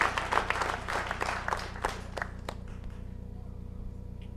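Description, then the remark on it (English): An audience claps their hands in a burst of applause that is dense and lively at first, then thins to a few scattered claps and fades out over a steady low hum. “Ooh, the hand clap standing.”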